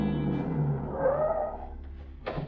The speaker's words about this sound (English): It's only a few minutes later that a car drives up.